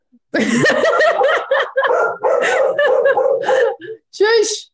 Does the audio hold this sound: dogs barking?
yes